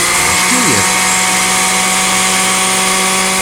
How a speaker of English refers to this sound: Right after this word from one of the fine members of the Poison Creek Mall Merchants Association so they can run the blender.